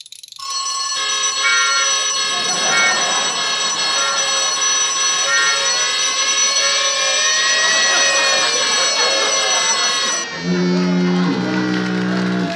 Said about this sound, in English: Well, the alarm still works. Switch that off.